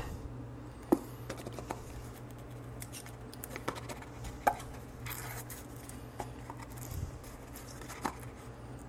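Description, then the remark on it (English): Someone struggles to open a food package marked 'open here': irregular crinkles, snips and sharp clicks, with a few louder pops, scattered over a steady low hum and no talking. “This says open here. It's hard to get open.”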